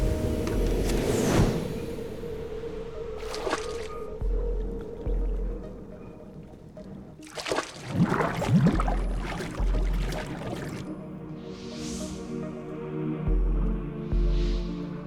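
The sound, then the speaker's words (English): Water splashes and sloshes in a burst midway through as Snake comes up from the water at a docking facility with cargo crates, over a low mechanical hum and soft whooshing ambience. “But this is some sort of docking facility where Snake is coming up from the water.”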